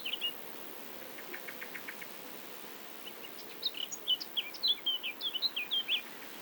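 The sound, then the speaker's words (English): Grasshoppers chirp in a field: a short, faint run of rapid scraping pulses, then brighter, high-pitched chirps come in quick, uneven bursts over a soft, steady hiss. No one speaks. “Listening to the grasshoppers and wondering why Gilbert White mentions them so infrequently, and whether that means there were fewer of them around those days.”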